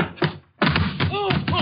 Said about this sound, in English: Hey, that was a pretty nifty tackle,